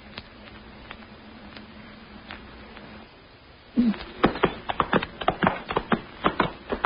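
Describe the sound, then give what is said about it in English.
Horse hooves clip-clop in a steady walking rhythm as a horse is ridden, faint and sparse at first, then suddenly loud with rapid, sharp knocks. No one speaks. “Watch out your horse doesn't stumble.”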